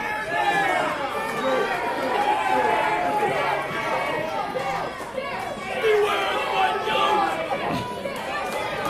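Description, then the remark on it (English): A large crowd roars and chatters continuously, with overlapping shouts and excited reactions rising and swelling throughout, loud and dense with no single voice standing out. “I think the crowd's speaking for itself here.”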